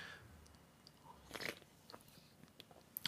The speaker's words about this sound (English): Okay, let me take another sip.